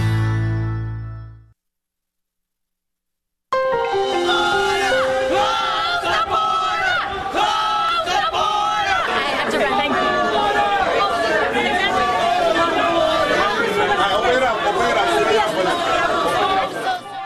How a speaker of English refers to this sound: Angry protesters were outside the Roosevelt Hotel who drowned out Congresswoman Alexandria Ocasio-Cortez's speech.